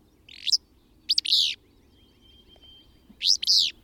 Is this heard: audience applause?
no